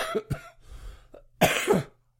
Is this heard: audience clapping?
no